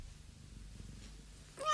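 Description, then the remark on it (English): A quiet, rumbling background stays calm until a single loud cat meow, in reply to a spoken question, breaks in at the very end, sharp and cut off as it rises. “Has your cat made you ill”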